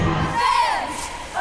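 A large crowd of fans at the 2023 TAPPS State Cheerleading Championships at the Bell County Expo Center in Belton cheers and shouts together, chanting "Go Bears", a loud, sustained roar of voices with high-pitched yells rising over the din, briefly swelling again at the end.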